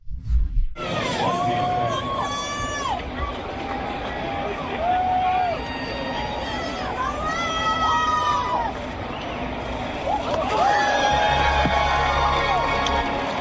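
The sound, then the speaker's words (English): A large baseball stadium crowd at a Boston Red Sox game cheers steadily for over ten seconds as Olivia Pichardo throws out the first pitch, a wild pitch to the backstop. A dense roar of voices is punctuated by rising whoops and shouts, swelling again toward the end. “It says she definitely showed some velocity in front of the cheering Boston crowd.”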